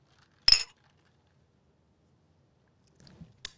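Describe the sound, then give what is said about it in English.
A sharp, bright clink of glasses raised in a toast with a short ringing tail, followed by quiet, then a few soft rustles and a second, fainter clink at the end. “So cheers. We'll raise them in the air if you got them.”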